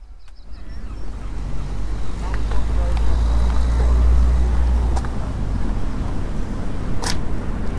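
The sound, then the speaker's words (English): Cars at a car and steam rally in West Bay, just over the river, give off a steady, deep engine rumble that persists throughout, with open-air wind noise and a few sharp mechanical clicks and knocks. “There's, I think, a car and steam rally being held in West Bay today, just over the river.”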